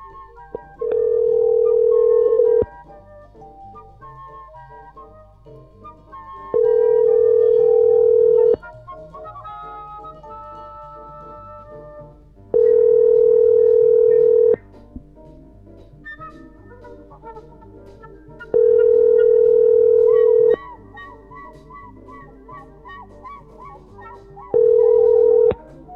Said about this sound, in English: We're going to close the show. We're going to call Brillo Hair's cell phone as always.